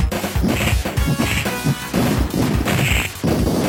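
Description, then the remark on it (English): A rapid series of punchy, crunchy punching sounds from the Sega Genesis version of a video game, in a retro 16-bit style, with sharp impacts and bright zinging tones, loud, with no talking. “Listen to this punching, even.”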